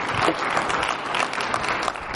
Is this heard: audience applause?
yes